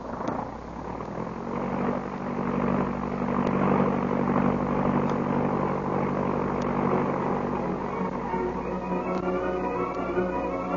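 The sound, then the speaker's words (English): A loud, steady propeller-plane engine roars throughout as the aircraft takes off, a low droning hum with a rising whine building toward the end, no voices. “Well, get in the plane.”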